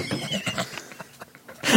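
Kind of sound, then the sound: signal or alarm, phone ringtone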